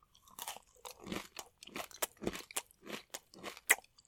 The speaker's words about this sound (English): The crunching in my ears was so loud.